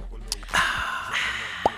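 Sips and gulps of water, a few short wet swallowing sounds and small plops spread over a couple of seconds, with a soft breath in between.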